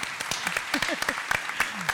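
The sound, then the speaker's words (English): An audience at a dinner event applauds the Tennessee Supreme Court having a majority of women, in a steady, dense patter of many hands clapping at once, moderately loud, with a few faint voices calling out underneath. “And to give a round of applause for that, it's really awesome.”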